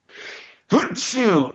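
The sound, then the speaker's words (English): A single sneeze: a breathy intake of air, a brief pause, then a sudden loud burst that trails off into a voiced, drawn-out tail. “No sneeze guard here or cough button.”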